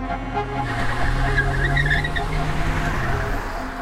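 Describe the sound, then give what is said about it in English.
A getaway car's engine roars steadily as it pulls away, with a brief high tire squeal in the middle, fairly loud, and no voices. “When they left in those getaway cars, they were headed about 30 miles outside of Philadelphia to a farmhouse.”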